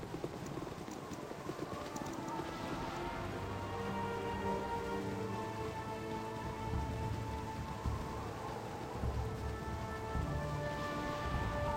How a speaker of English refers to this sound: The rain continues to come down.